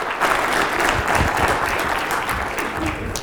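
A church audience breaks into a steady round of applause to welcome a church member to the stage during a sermon, dense clapping from many hands holding at an even, fairly loud level throughout with no voices standing out.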